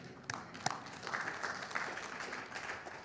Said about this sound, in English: Yeah, thank you for clapping. That was a great place to clap.